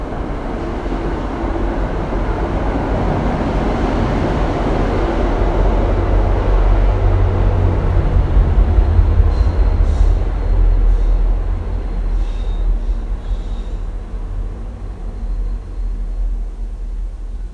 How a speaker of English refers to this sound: I'm outside the Porter Square subway and commuter rail, and it goes right by. It's like 20 feet away, and the windows are open. It shakes the whole building. So when I heard the train coming, I muted the microphone.